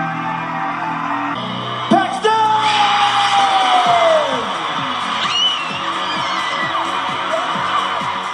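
A 16-year-old girl from Cape Town, just announced winner of South African Idols Season 13, screams excitedly in a long, loud, wavering cry that slides downward in pitch, set against the steady roar of a cheering crowd.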